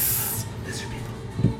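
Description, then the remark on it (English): A voice makes a sharp, breathy hiss, loud for under half a second, imitating a woman with scales on her shoulder hissing at her companion in a tabletop role-playing game, then trails off into quieter breathing and faint noise with a small bump near the end. “And she's gonna hiss in the other direction at her companion and go, hiss.”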